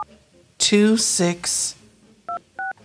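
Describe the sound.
A person speaks briefly, then two short, clear dual-tone beeps sound in quick succession as a phone number is dialed on an iPhone dial pad, crisp at moderate volume.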